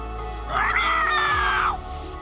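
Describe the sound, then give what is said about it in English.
A voice imitates a pterodactyl screech on request: one rising, strained shriek held for about a second, then cutting off abruptly, loud with no other talk. “So Helen asks, says, can I please have a pterodactyl screech?”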